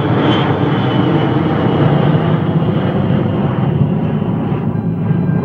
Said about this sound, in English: Boeing Airplane Company's first jet and their first commercially successful jet airliner.